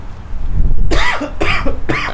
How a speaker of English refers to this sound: Excuse me for coughing there.